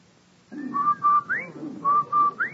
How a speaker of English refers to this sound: Say, Andy, did you hear that? Come on. Did I hear what? That whistle. Why, that's the Rinso White whistle.